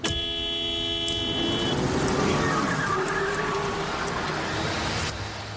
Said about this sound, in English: Rachel honks angrily and takes off